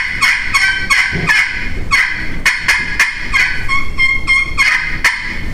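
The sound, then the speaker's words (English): A friction call scratches out a rapid series of raspy hen turkey yelps, each a quick small stroke about the size of a dime, loud, with short bursts repeating in a steady rhythm and no talking. “A hen yelp is about as quick as you can draw the size of a dime is about what a hen yelp is.”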